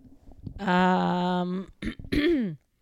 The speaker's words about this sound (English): You keep coughing. I'm sorry.